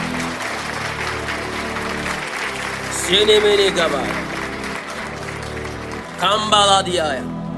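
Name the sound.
audience clapping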